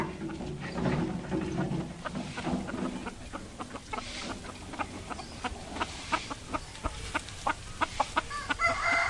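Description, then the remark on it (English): A farmyard flock of hens clucking in quick, overlapping bursts that grow busier toward the end, with a rooster crowing among them over a steady outdoor background in a small countryside town in Vietnam; no one speaks. “But it's a different scene in smaller towns in the countryside, where there are still hens and ducks in profusion.”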